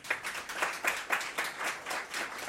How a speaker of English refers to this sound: You can begin with giving them a round of applause.